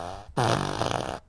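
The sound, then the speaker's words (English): A loud, buzzy fart sound effect from a fart machine bursts in after a brief lead-in, sustained for almost a second with a rough, sputtering texture before cutting off abruptly. “I have the fart machine. I have the fart machine one.”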